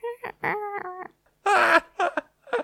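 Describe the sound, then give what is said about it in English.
A voice softly imitates a crow, making a string of short, gentle caws with harmonic tones, then a breathier, rougher burst followed by two brief quiet calls. “It's a very, very gentle, quiet crow.”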